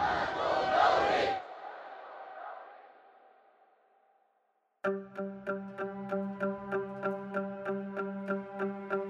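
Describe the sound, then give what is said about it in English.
A loud burst of protest crowd voices chanting together, "Sister, you are not alone. We are proud to say, I am Gauri," lasts just over a second, then rings out and fades to silence, followed by a steady run of rhythmic, pitched ticking pulses. “Where the crowd chanted, "Sister, you are not alone. We are proud to say, I am Gauri."”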